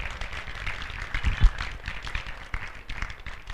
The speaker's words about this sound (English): Come on, superheroes, give Jesus a hand clap.